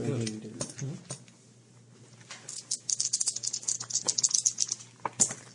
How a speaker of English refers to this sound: He's going to roll. Oh my god. What have you rolled? Snake eyes.